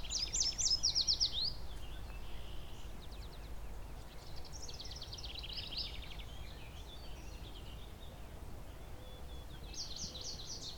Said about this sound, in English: More yellow warblers. So here's a yellow warbler.